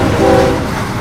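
A loud train roars close by with a steady low rumble, and a brief blast of its horn sounds early on before fading into the rolling noise of the cars.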